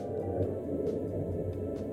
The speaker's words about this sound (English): There's an airplane.